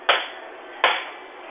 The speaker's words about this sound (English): stay on the phone with me, whack the table 3 times in front of you. Why am I doing this? This is the calibration. You don't have a bell. Like, just, I need 3 times right now.